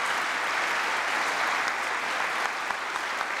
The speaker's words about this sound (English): Please give another big round of applause to all of our 2019 high school graduates.